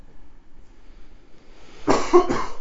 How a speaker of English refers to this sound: I cough, y'all. I'm sorry. Yeah, you're dying here. I think are we done so I can go and cough?